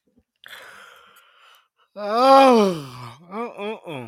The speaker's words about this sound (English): That was a good yawn. Hope I didn't pass it on to too many people and y'all all start yawning.